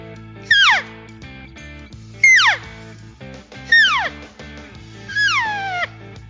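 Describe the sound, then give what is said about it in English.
Four cow elk mews blown on a diaphragm call, each a loud, nasal whine that slides from high to low pitch, spaced about a second and a half apart with a faint steady hum underneath. “Just the cow call, just a mew, a basic mew, is the foundation to all other elk sounds, okay?”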